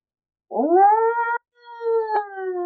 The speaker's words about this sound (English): That way, boys, follow the howl. I draw my combo, and I start dashing towards the howl.